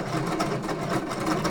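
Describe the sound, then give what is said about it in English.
A malfunctioning embroidery machine runs with a steady, harsh mechanical whir broken by quick, uneven clacking bursts, sounding rough and not quite right. No one speaks. “Does that sound like an embroidery machine that's doing its job?”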